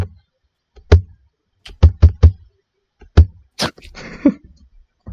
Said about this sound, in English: I don't know if you guys could hear that, but I just slammed my laptop.